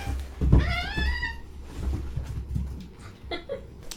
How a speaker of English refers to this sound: Cats rolling in here fighting with each other. You guys are fighting like cats and cats.